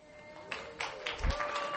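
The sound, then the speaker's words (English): Scattered clapping from an audience at a third Sunday morning church service starts and quickly builds into steady applause for a speaker, a dense patter of many hands over a faint, steady hum. “Third service applause, that's new, I kind of like that.”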